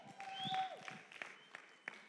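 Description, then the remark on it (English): A faint, half-hearted cheer from an audience during a morning church worship service: a brief murmur of scattered voices with a sliding whistle and a few sparse claps, petering out in about two seconds. “Wow, half a cheer.”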